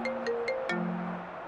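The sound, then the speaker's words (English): A phone ringtone plays a short electronic melody of sustained tones that step down in pitch, with a few soft clicks along the way. It comes through clearly, with no talking. “Jammy bastard, I wish my phone had fucking rang.”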